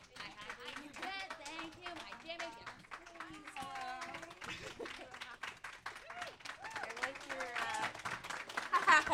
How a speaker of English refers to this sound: Keep clapping.